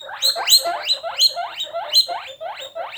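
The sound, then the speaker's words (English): A guinea pig squeaks in a rapid run of high, rising whistles, about two per second, repeating steadily with no voices present. “That was a guinea pig.”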